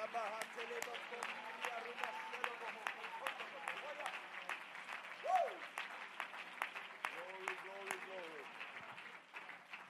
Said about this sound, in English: And everybody said, in Jesus' name, would you clap your hands one more time to the Lord and let's give him a shout of praise in this house. We love you, Lord Jesus Christ.